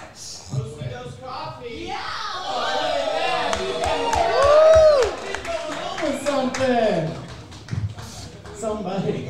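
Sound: audience round of applause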